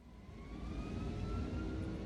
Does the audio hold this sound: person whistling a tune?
no